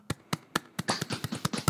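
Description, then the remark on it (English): A short burst of light hand clapping, about nine quick, sharp claps in an uneven rhythm over under two seconds, moderately loud, with no voices. “Yeah, honestly, if you're in the car driving right now, give a little clap.”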